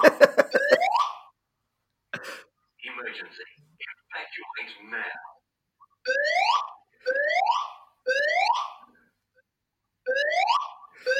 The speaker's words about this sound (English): Of all the fire alarms I've ever heard, it is among the most annoying one. And if you chose not to evacuate the building, it would probably drive you crazy to the point you would.